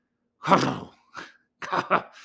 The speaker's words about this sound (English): That was a funny cough, huh? Yeah. Didn't want to say it, but I said it.